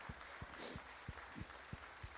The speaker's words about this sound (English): So I want to give all our volunteers and you guys a hand clap for stepping up.